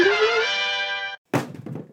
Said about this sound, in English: My phone just jumped in the bin. It jumped in the fucking bin. What? The bin is under the desk. And it managed to bounce off an Amazon box into the bin.